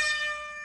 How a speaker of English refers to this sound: And that's it. That's the siren. The regular season is finished. The Bucks go down in the finale, 112 to 118. The Chicago Bulls beat them.